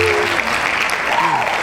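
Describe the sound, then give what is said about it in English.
Steady, dense hand clapping from a group fills the whole moment at a fairly loud level, with faint voices murmuring underneath. “Hand claps.”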